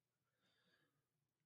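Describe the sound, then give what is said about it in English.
A single drawn-out yawn with a breathy, slightly voiced rise and fall lasting about half a second, and no talking around it. “and I just realized I yawned on my own show.”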